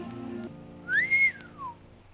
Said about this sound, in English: What'd you whistle for? Just saw a young fella and a girl swimming without a stitch on.